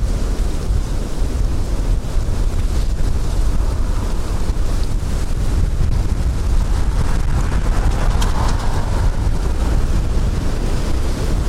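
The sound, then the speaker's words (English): Strong wind blows steadily outdoors, a loud, continuous roar and buffeting against the microphone with rumbling gusts throughout, no voices present. “Sure is windy.”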